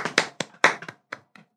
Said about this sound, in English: All right, so everybody, clap your hands.